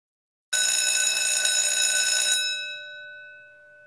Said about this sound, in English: And my phone rings. My proctor calls, proclaiming that we are short one answer sheet.